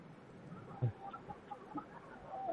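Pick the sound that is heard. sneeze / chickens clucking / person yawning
chickens clucking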